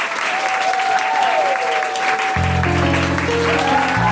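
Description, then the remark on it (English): An audience applauds steadily and loudly at the close of a comedy show as the performers are thanked, a dense wash of clapping with some whistles, as low music swells in beneath it about halfway through. “Please give it up for May Martin, Bisha Kayali, Steve Alley.”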